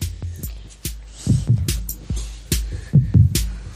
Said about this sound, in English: Let me get the heartbeat.